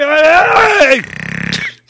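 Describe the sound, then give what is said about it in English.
A person imitates snoring: a drawn-out, falling voiced groan that turns into a rapid, rattling snort lasting about half a second, then quiet. “Is that the alien call? No, that's you snoring right now.”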